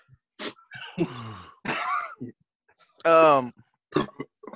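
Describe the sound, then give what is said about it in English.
A string of harsh coughs and throaty clearing sounds, loud, from a person who has COVID, coming in uneven bursts with short pauses, including one longer strained, voiced hack near the end. “niggas coughing and shit.”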